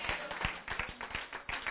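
Hands clapping for God in a quick, uneven stream of sharp smacks, with several claps overlapping like a group joining in. It stays fairly loud and steady throughout, and no one speaks.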